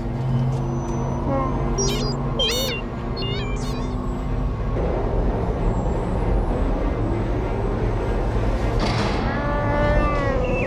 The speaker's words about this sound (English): Your Highness, there's nothing more we could do tonight. The shield doors must be closed. Close the doors.